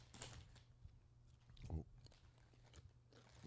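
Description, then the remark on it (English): Moist chewing of a soft cream cheese snack, with irregular bites and mouth sounds spread across a few seconds over a low steady background hum and a faint murmur. “He's thinking about it. He's chewing.”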